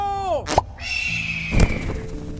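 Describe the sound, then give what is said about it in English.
An eagle screech rings out as a falling, harmonic cry, followed by two sharp bursts of noise and a long, steady high-pitched tone, all fairly loud, with no one speaking; it stands for Odin taking the form of an eagle to escape. “And now, to escape, Odin as eagle, go!”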